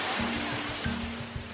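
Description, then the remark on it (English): A steady, loud rush of pouring water cascading down the steps of a simulated flooded subway station on the earthquake ride at Universal Studios, with a low rumbling hum underneath and no voices. “a video on X, formerly called Twitter, of water cascading down the steps of a flooded subway”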